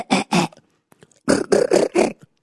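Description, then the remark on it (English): A beatboxer makes a raspy, phlegmy tongue-roll cough sound, made by combining a phlegm sound with a tongue roll with air: two gritty bursts, a short pause with faint clicks, then three more rapid throaty bursts, loud and rough, with no talking. “But once you are able to like break it down, okay, so like, it's like a, it's like a tongue roll with air. So where is this like, okay, so that's kind of a coughing sound.”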